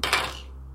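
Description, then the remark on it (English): Forged dice clatter briefly across a hard tabletop, a quick burst of bright clicks that fades within a fraction of a second, with a steady low hum underneath and no talking. “Just warning you, I'm using my forged dice.”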